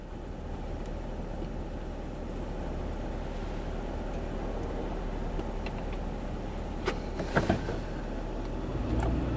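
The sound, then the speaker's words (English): Steady, low rumbling of heavy road traffic, a traffic mess holding up a couple thousand drivers, hums without a break, with a few brief sharper clicks and swishes partway through as vehicles pass. No one speaks. “Why are me and a couple thousand of my closest friends having to endure this traffic mess?”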